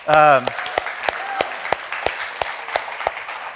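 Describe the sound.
An audience breaks into a round of applause: a steady wash of clapping with sharp, evenly spaced claps standing out, opening with a brief raised voice like a cheer.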